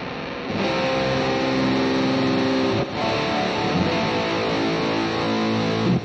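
A guitar run through an Electro-Harmonix Micro Synthesizer effects pedal plays sustained, buzzy chords with a thick, keyboard-like tone, loud and steady apart from one brief break midway, with no talking.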